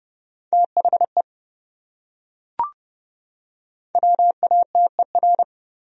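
Morse code sent at 30 words per minute, spelling one of the 100 most common English words: quick on-off beeps of one steady, mid-pitched tone in two clusters, separated by a pause with a single soft click. No voices.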